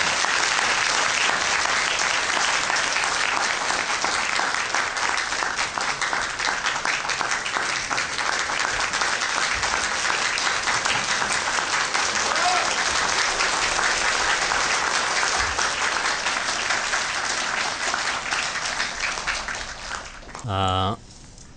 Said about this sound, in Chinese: 我们就以热烈掌声我们来欢迎堪布上台为我们演讲。